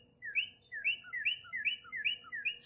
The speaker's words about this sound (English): I think the male cardinal's about to come over. I can hear him.